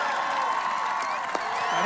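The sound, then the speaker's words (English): A large crowd at a packed presidential rally in West Virginia cheers and applauds for the president as he introduces Carol Miller, in a steady, loud wash of noise, with overlapping voices and shouts rising through the din for the whole stretch. “He, you know, came from multiple rallies, flew in on Air Force One, and it's packed and they're cheering for him and he introduces her.”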